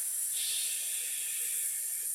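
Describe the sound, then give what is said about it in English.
A steady, breathy hissing "sss" as someone exhales through their teeth with soft lips in S breathing, holding the sound evenly for about two seconds, with no talking. “You're going to add a little component that's called S breathing, that when you exhale, you're going to make the sound of an S or a leaky tire or a snake hissing.”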